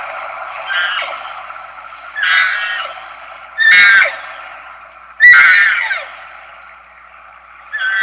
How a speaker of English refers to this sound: you can hear a single calf responding in the distance, and she just takes off running for her